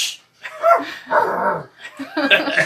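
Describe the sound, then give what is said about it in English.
A dog shut behind a closet door barks and yelps in three loud bursts, each with a whiny, drawn-out edge, right after a person gives a quick shushing hiss; the dog is scratching at the closet door. “Dog is scratching at the door of the closet.”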